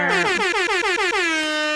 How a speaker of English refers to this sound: Jay, put an air horn in here, please.